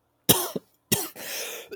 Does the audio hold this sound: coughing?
yes